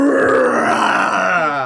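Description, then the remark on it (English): A person imitates a lion's roar for a lion illusion created with a Silent Image spell in a tabletop role-playing game, one long, loud, gravelly growl that holds steady for under two seconds, rough and throaty with a slight rise and fall in pitch. “And I'm going to create a lion.”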